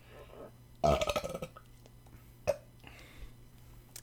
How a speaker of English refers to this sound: One sec, I have to burp.